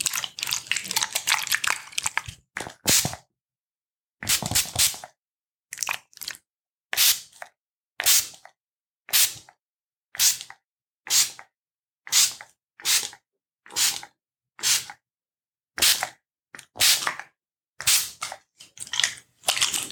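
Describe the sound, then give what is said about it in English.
A spray bottle spritzes onto the top half of a person's legs in short, hissy bursts, about a dozen quick pumps in a steady rhythm after a longer opening stretch of spraying, with no voices. “And I'd just like you to imagine any tightness, any stiffness, any sort of restlessness in the legs starting to fade away ever so gently as I spray.”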